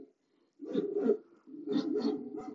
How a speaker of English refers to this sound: The dog barking sound effect.